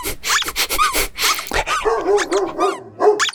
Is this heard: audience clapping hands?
no